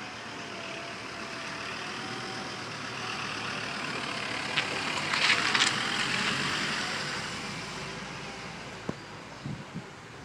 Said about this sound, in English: Oh, there's another car coming.